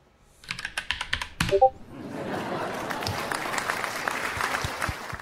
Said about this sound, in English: Lots of claps in that one.